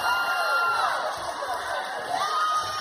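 A large audience shouts and cheers together in praise of God, a dense, steady roar of many overlapping voices that stays loud and sustained throughout, with raised individual cries rising out of the crowd.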